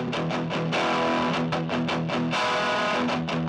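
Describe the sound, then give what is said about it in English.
A distorted electric guitar riff, played through a Proko Rat distortion pedal into a tiny 5-watt Vox amp, plays chunky, rhythmic chords with a gritty, saturated amp tone, loud, with no voices. “I recorded through a Proko Rat, the best distortion pedal, into... I just have this tiny Vox amp.”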